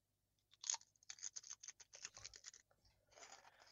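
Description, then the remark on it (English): Crisp crunching of double-crunch kettle-cooked potato chips being bitten and chewed, a sharp first bite followed by a rapid series of brittle cracks, then a softer grinding crunch at the end. “I want to hear the double crunch. Apparently, they're double crunch, and yeah, they're kettle cooked.”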